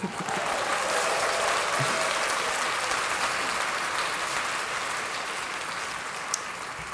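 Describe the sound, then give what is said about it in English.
An audience claps steadily for about seven seconds, a dense, even wash of many hands that stays loud throughout before easing off slightly at the end. “Let's clap that up.”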